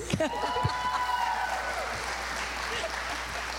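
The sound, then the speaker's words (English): An audience applauds two grown women who have just recited the itsy-bitsy spider rhyme in baby voices: steady clapping from many hands for several seconds, with a brief voice and a high sustained tone at the start. “This congregation is a wonderful, loving congregation because you just applauded for two grown women talking like babies.”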